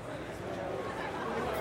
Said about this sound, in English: It is October 1995. Crowds are filing into the Nippon Convention Center in Tokyo for the 31st Tokyo Motor Show.